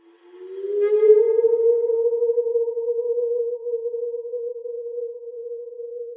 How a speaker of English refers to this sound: And while the chimes of the clock yet rang, it was observed that the giddiest grew pale, and the more aged and sedate passed their hands over their brows, as if in confused reverie or meditation.